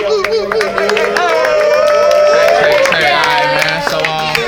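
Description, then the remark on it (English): A lively crowd cheers and claps for a DJ being introduced, in drizzling rain, with scattered whoops and shouts rising over a dense, steady wash of applause that stays loud for the whole moment. “Get it up for ….”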